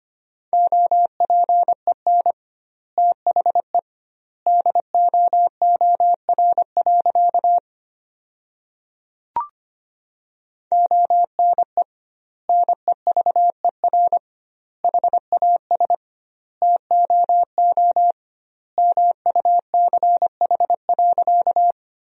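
Fast Morse code at 25 words per minute with doubled word spacing, sending sentences built from the top 300 words: a single steady mid-pitched tone keyed in rapid dots and dashes, grouped into word bursts with wide pauses between, plus one brief click midway.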